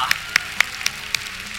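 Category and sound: crowd, audience applause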